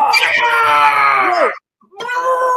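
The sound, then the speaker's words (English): A voice imitates a loud, strained exertion yell, a sustained cry lasting over a second, then after a brief silence a second shorter grunting shout begins, forceful. “So you'll hear fighters and they're like, they're like punching and stuff.”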